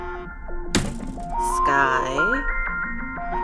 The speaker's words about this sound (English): Sky, your alarm.